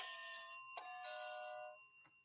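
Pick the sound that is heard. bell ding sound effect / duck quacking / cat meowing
bell ding sound effect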